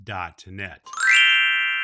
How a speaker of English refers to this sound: There's our chimes, boys and girls, our Glockenspiel, which tells us about time to say goodbye for this episode of SantaClausSays.net.